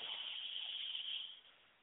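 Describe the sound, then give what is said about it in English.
A long, steady inhale through the nose, a soft airy hiss that holds for over a second and then tapers away. No one speaks. “And so let's take those breaths, breathing in and out through your nose. Take a deep breath in.”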